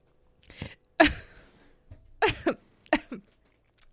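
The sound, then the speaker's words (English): A run of harsh coughs picked up by a microphone: a sharp loud burst followed by several shorter, rougher hacks spread over a few seconds, with no talking. “I managed to cough into the microphone.”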